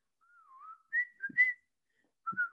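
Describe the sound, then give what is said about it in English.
Someone whistles a short theme-song melody, a sliding phrase followed by a few bright, clipped notes, then a pause before another brief whistled phrase. “Sorry, I was talking over you. I was just whistling.”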